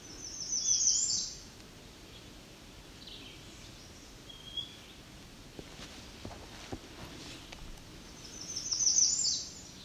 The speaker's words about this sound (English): Here's our black-capped chickadee.